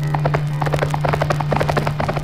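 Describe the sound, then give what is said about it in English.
Rapid, uneven hoofbeats of a horse galloping toward a spaceship pound in a quick, rolling rhythm, with a steady low hum running beneath them and no voices. “Racing his horse directly toward the spaceship, with Alan close behind him, he hurls the grenade through the door a split second before it closes, and the ship starts to rise.”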